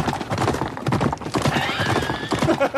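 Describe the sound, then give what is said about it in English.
Horse hooves clip-clop in a steady, busy rhythm while a horse whinnies with a rising, wavering neigh midway through, loud; a clip from the Australian films The Man from Snowy River and Phar Lap. “All the horses were naked in that as well.”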